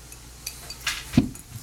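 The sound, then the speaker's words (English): Glasses clink together in a toast: a soft brushing knock followed by one sharper tap with a faint ringing tone, fairly quiet, with no one talking. “Should we cheers?”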